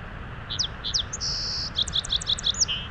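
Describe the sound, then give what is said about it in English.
A song sparrow (Melospiza melodia) sings a bright, clear phrase: a few opening notes, a sustained buzzy trill, then a quick run of chirpy notes, heard alone over a soft outdoor background rumble. “For some reason, whenever I see a song sparrow, I always say its Latin name out loud.”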